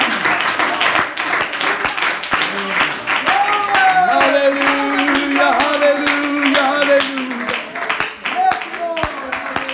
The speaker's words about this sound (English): Why don't we clap our hands and worship Him?